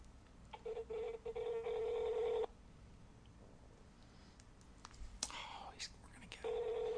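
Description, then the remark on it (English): A phone on speaker slowly dials a number, taking about 20 seconds, and rings: a quick string of short electronic tones leads into a long steady ring, and after a pause of low murmuring the ring tone starts again. “Took 20 seconds to dial that number.”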